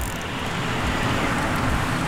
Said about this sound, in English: This car comes, and this is late at night, it comes pretty quick and is making a turn onto our street. And we're near the top of the street.